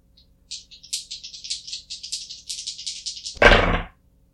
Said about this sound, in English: Okay, you can roll 2 dice then, take the better.